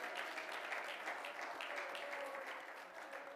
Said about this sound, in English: Come on, clap your hands and praise the Lord this morning.